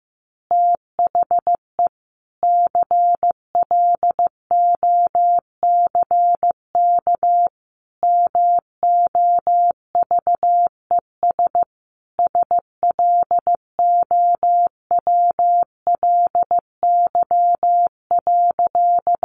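Morse code sending easy phrases at about 15 words per minute: a single steady, mid-pitched tone keyed into quick dots and longer dashes, grouped into words separated by short pauses, with no voices.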